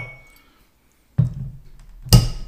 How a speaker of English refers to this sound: I'm actually going to pour a fresh shot into a glass that's not been tainted by coffee. All right, do that. What a wonderful sound.